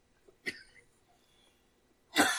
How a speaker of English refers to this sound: Alright, hold on. Sorry, can't shake this stupid cough.